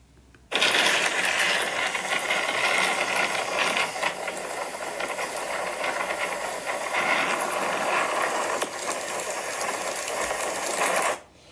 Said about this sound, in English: You are listening to some of the winds of Hurricane Nicole. Hurricane Nicole made landfall about 3 a.m. on North Hudson Island, just south of Vero Beach in Florida, bringing heavy rain and winds.